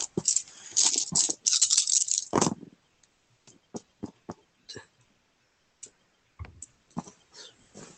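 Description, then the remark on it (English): Dice rattle loudly in a cup or hand for a couple of seconds, then tumble and click across a hard surface in sparse, irregular taps before settling, rolled for a lightning bolt's damage in a tabletop role-playing game. No one speaks. “Where the fuck is the dice?”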